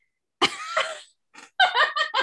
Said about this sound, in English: Well, have you know that you were coughing so loud it didn't pick it up.